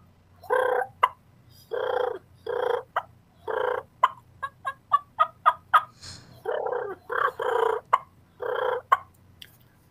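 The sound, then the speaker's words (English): Turkey clucks and soft rolling purrs made on a diaphragm call imitating a turkey: sharp single clucks scattered between short buzzy purr bursts, clear with no talking. “And, you know, and the cool thing about diaphragm is I can do a real soft purr. I can add clucks in there if I want to do some soft yelps.”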